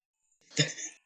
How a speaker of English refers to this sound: I hiccup. My bad.